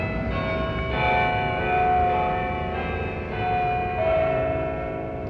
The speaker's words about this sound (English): Twelve noon church bells.